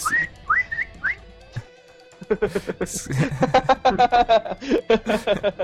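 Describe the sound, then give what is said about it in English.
A person whistles three short, rising notes, then after a brief pause a busier stretch of quick, choppy, whistle-like sounds follows. “Can I say that whenever I was using telekinetic projectile, can I say that I was whistling as I was doing it?”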